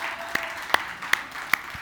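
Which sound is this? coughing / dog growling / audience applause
audience applause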